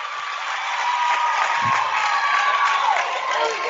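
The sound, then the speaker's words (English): A large indoor crowd at a volleyball match cheers loudly and steadily after a powerful hit is blocked at the net, with whistles and shouts blending into a dense roar that holds for several seconds; a high sustained whistle rises out of the noise. “Fires up the crowd for Elm Creek, sending it over and down.”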